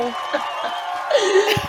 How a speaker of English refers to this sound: You got your applause and everything. Yes, thank you, thank you, thank you.